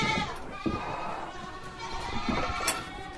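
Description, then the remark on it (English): Several goats at Blue Ledge Farm bleat over one another in a steady, wavering chorus, some calls loud, others softer, with no voices present. “Thanks to the family at Blue Ledge Farm for letting us come visit and for teaching us all about goats and cheese making.”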